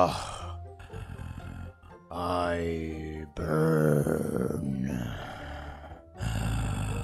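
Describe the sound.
Low, rough vocal creaks and groans come in several drawn-out bursts, one rising into a wavering moan, from someone usually slow and methodical of speech who now sounds injured. They are loud and strained, with a few indistinct words mixed in.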